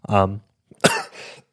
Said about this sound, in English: Sorry about the coughing. I genuinely have got like so much dust in my throat. And for some reason, I wasn't coughing at all, and then I started talking, and now I can't stop.